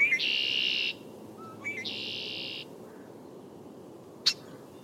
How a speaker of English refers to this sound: It's March in Maine, and the red-winged blackbirds have returned.